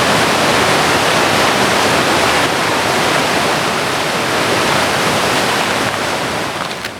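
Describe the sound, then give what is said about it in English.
A river roars and crashes without pause, a dense, loud wash of rushing water filling the whole clip, steady, easing slightly only at the very end. “My thoughts were just a mere reflection of the river's continuous crash.”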